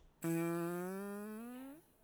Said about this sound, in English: And then we have fart long.